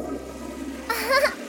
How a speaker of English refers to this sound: Then she flushed the toilet.